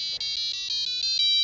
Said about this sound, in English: When you hold down the soft rubber button on the side of the beacon, your power will come on and you'll hear this sound.